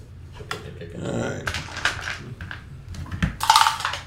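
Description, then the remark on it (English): Clattering and rattling as someone rummages through a box for pencils, a busy run of irregular clicks and knocks with a brighter jangle near the end. “Are there any in that box that are... There should be more pencils.”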